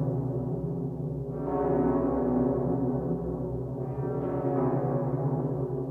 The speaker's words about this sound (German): Eine Glocke ist der Gemeindediener. Sie ruft Versammlungen, Gottesdienste und die Uhrzeit. Trauungen sagt sie an, Taufen, Sterbefälle.